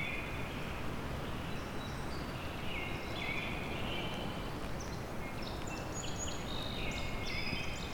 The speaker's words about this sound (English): This American robin still going on though.